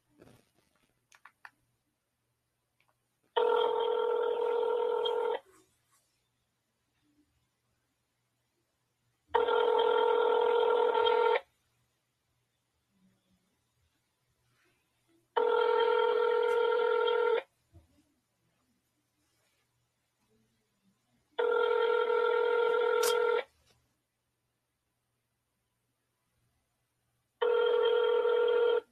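A phone call placed to a movie listings line rings out: five long, buzzing rings, each about two seconds, evenly spaced with silent gaps between them. No one speaks.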